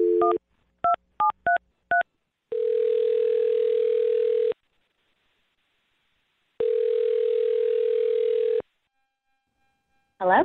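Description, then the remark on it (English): A quick series of touch-tone dialing beeps, then two long, steady ringback tones separated by a pause, before a voice briefly answers at the very end. “We'll get her on the phone and see if she thought the joke was funny, and then see if she'll go out with you again, okay?”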